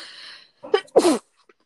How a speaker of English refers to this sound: And bless you. Excuse me. I'd be sneezing. I didn't take my allergy medicine because I woke up 10 minutes before we started.